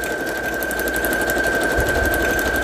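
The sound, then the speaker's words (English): A sewing machine runs steadily, its rapid needle stitching forming a continuous mechanical whir with a high constant whine and fast, even pulsing throughout, with no talking. “If it's easier to sew this way, just turn it around and carry on.”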